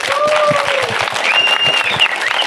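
Audience applause: a dense, steady wash of many hands clapping at a loud, even level for the whole stretch, with a few thin whistle-like tones gliding over it.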